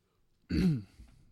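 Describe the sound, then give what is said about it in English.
A short, voiced yawn: a sudden breathy, throaty sound whose pitch slides downward over about a third of a second, followed by quiet, breathy trailing noise. No talking. “Sorry, you caught me in the middle of a yawn there.”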